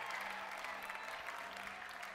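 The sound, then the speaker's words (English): A large group claps together, clapping to let the chains break in the name of Jesus, in a dense, continuous wash of applause that holds steady and fairly loud for the whole stretch, with no distinct pauses or individual claps standing out. “As you clap, let the chains break in the name of Jesus.”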